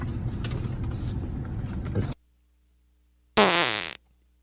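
A long, rough, rumbling fart is followed after a brief silence by a shorter, squeaky, wavering one, both loud, with no voices.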